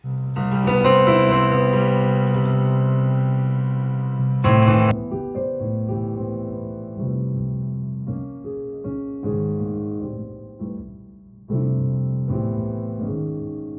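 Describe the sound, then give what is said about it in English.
Piano playing as heard with hearing loss and no hearing aid: muffled, dull-sounding sustained chords and a slow melody with the bright upper tones stripped away, with no voices. “And this is how it sounds when I play my piano.”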